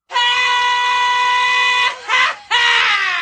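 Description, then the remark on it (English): A loud, shrill scream from the soundboard's "Mr. Scream" sound effect, taken from Wayne's World 2, holds steady for nearly two seconds, breaks into a short wavering burst, then surges back at full strength. No talking is heard. “The effect on the board that says "Mr. Scream."”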